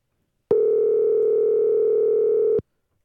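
A steady, unbroken telephone dial tone hums for about two seconds while a phone call is being placed, loud, then cuts off abruptly; no voices are heard.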